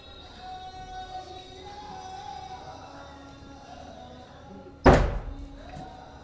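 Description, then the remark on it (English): A door is shut with a single sharp thud near the end, standing out loudly against a quiet room hum with faint background murmur. “come in please or close the door.”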